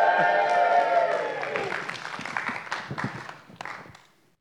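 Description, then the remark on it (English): A crowd lets out a loud, sustained cheer that quickly gives way to a burst of clapping and scattered whoops, all fading out after a few seconds. “The people, in their loudest voices, give a big cheer for Mordecai.”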